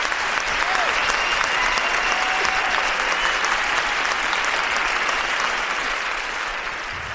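A sustained round of loud applause from a large standing crowd as a woman is welcomed to share a testimony. Dense, steady clapping holds for several seconds with a few faint whoops mixed in, tapering slightly at the end.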